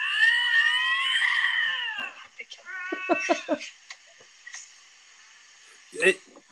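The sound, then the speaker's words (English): Two lynx caterwauling during courtship: a long, wavering, harmonic yowl, then a series of shorter stuttering wails and a final sharp cry, loud with no talking. “These are two lynx getting ready to go at it.”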